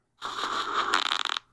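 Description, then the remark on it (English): A recorded fart sound, number 8 from a selection, about a second long: a steady, raspy, breathy blast that breaks into a rapid sputtering flutter before stopping abruptly. No one speaks over it. “Let's end it on fart number 8.”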